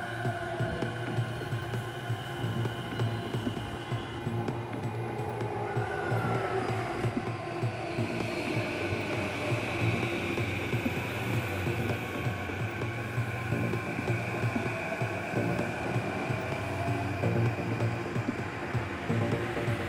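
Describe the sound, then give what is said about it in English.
A local train rolls into a station platform on track 1, its steady rumbling hum layered with droning motor tones and a brief rising whine, loud and continuous throughout with no voices. “The local train will arrive shortly on track 1. Please stand behind the yellow line.”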